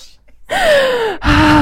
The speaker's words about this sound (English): Beware if you are wearing headphones, by the way. Just a warning. You might just get this. Very heavy breathe.